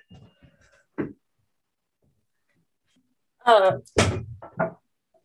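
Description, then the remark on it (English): A door opens and closes: a short clunk, a pause of a couple of seconds, then a brief creaking squeal and a couple more latch knocks. “So I might just open the door.”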